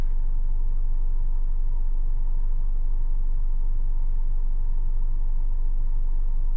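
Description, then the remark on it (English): A steady, low engine rumble fills the cabin of a parked car, heard from the front seat in the middle of the afternoon, a continuous drone with faint hiss above it and no voices throughout. “I'm sitting in the front seat of my car right now, in the middle of the afternoon.”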